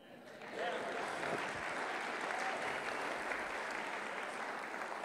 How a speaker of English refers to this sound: Someone wants to clap.